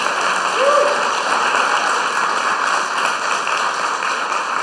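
A church audience applauds, dense, steady clapping that blends into a continuous crackling wash, holding at an even level for the whole few seconds.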